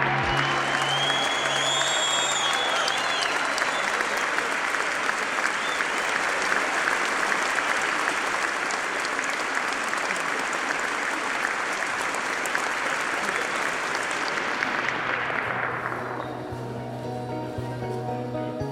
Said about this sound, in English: Applause.